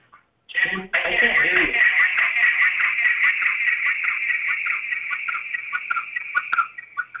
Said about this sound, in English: I can't hear you. But I do hear a really big echo.